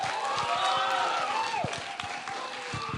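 A crowd cheers and applauds steadily, a dense wash of clapping with scattered whoops and shouted voices rising above it, loud and sustained throughout.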